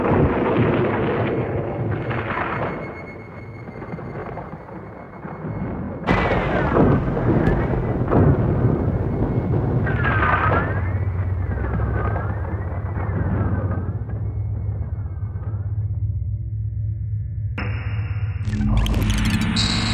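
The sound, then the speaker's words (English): A loud, continuous effect of a lightning storm in space: deep rumbling roars and sudden crackling booms, layered with wavering electronic tones that give it an otherworldly, sci-fi feel. “Whomsoever pilots their ship fastest and bravest can penetrate the lightning storm in space.”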